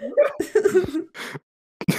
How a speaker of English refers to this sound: Okay, and then I take a puff of my stogie and blow it out. I cough.